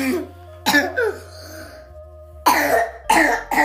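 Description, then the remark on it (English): A person coughs hard several times in two short bursts separated by a pause, the harsh, raspy coughs mixed with rough throat clearing, with no talking. “We should get you some water.”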